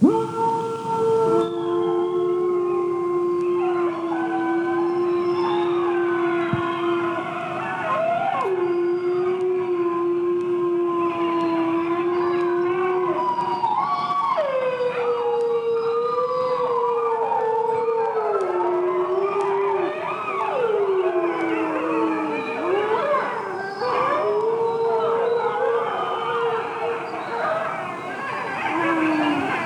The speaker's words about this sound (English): Do we know how many wolves are in this sound clip? No. Okay. At least four. But we don't know if there's any more.